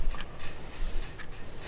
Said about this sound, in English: If the fan, is the fan okay? It doesn't bother anybody, the clicking?